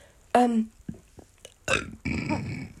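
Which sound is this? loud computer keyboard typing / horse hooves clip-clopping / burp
burp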